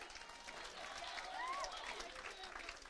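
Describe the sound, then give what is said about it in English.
A crowd claps steadily throughout, a dense, even wash of applause with a murmur of voices and a brief whistle-like tone rising above it midway. “They didn't even hear what you said. They were clapping.”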